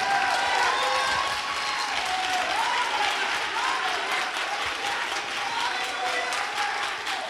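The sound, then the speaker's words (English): A standing audience claps hands for what God is getting ready to do, in sustained, dense applause for several seconds, steady and loud, with crowd voices and some tonal wavering sounds mixed underneath. “Will you clap your hands for what God is getting ready to do?”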